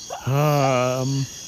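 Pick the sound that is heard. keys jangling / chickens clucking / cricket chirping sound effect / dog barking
cricket chirping sound effect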